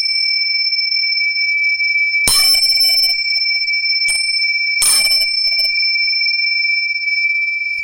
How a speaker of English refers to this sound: Some damn annoying bells. No. What do you know? They're not annoying. They are.